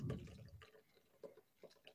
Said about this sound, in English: Then you take this ice that you got in your martini glass to get it chilled. Just dump that back in the bowl. And then you're just going to pour this this delicious cocktail here into your martini glass.